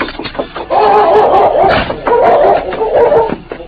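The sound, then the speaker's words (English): A powerful dog named Chief, straining against the chain that holds him outside a house, lets out two long, strained, whining cries, each lasting about a second, with short yips between them and no talking. “Outside the house, the powerful dog pulled against the chain that held him.”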